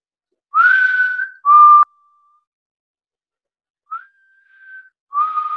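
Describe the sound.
A person whistles an imitation of a bird call: a few short, clear tonal phrases with a pause and a long, thin sustained note, fairly loud, with no talking.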